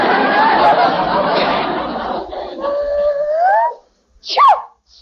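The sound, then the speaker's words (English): A dog howls inside a house in long, wavering wails that rise and fall over several seconds, then goes quiet before letting out one short, high-pitched whimper. “She wasn't sneezing before, and the dog was here all the time.”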